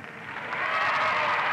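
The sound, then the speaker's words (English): A large convention crowd roars with a dense wash of chatter, clapping and cheering that swells louder over the first half second and then holds steady, with no single voice standing out, before the chair calls the roll. “It took a while to quiet down the crowd long enough to call the roll, but the chair managed it and counted the votes.”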